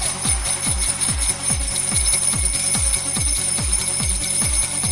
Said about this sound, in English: I reckon people need to take sleigh bells to raves.